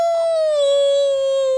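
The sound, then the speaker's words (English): A person imitates a wolf howl with one loud, sustained, steady vocal tone that sags slightly in pitch across more than a second and a half, with no other sounds. “What did the wolf say when he got hurt? Ow. Ow.”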